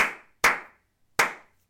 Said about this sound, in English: Give everybody a round of applause.